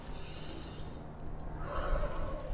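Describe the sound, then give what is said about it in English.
A long, airy inhale followed by a fuller, rougher exhale with no talking, like someone taking a slow, deep breath as a breathing exercise learned in martial arts class, while in an elevator. “Okay, time to put what I've learned in my martial arts class into practice, starting with the breathing exercises.”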